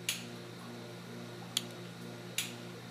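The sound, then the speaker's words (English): Three sharp, bright cracks from a mantis shrimp smashing snails in a lab aquarium, spaced irregularly over a steady low mechanical hum, with no voices. “You might hear them pounding some snails. It's pretty, there are lots of crackles and pops, especially if people just fed them snails.”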